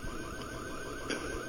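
A warbling electronic alarm cycles steadily in the background, its repeating rising tones faint and continuous with no voices over it.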